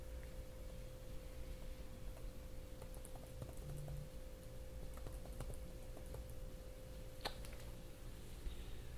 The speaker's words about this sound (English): This keyboard also takes a little bit of getting used to for me.